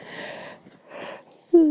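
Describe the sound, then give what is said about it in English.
A person yawns: two long, airy breaths, then a short, loud voiced groan at the end. No one speaks. “So maybe you can put up with my evil ways and my yawning.”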